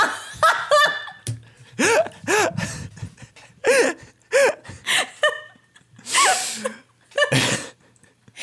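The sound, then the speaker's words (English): Loud sneezing bursts break out amid stretches of laughter, with breathy gasps and sharp explosive sneezes repeating over several seconds; no clear speech. “Sorry, that whole time I was gearing up for a sneeze, so can you say all that again?”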